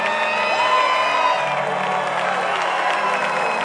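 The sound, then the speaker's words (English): A large audience claps and shouts praise to the Lord together in a steady, loud roar of cheering and whooping voices for several seconds without letting up. “Clap your hands for the Lord and give the Lord a shout of praise in this place.”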